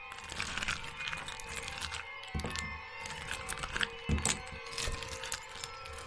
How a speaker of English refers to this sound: But it reaches the floor, there is a noticeable thud. Then a steady scraping sound as it drags itself across the floor towards the priority orb.